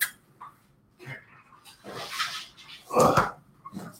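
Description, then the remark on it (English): A female bulldog named Zoe snuffles and snorts in irregular, breathy bursts, building to a loud wet snort near the end before trailing off into quieter sniffs. “This is my bulldog, and she's not really a lap dog.”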